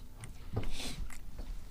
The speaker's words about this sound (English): I think they can hear me chewing. Can you hear me chewing? Just chew, chew.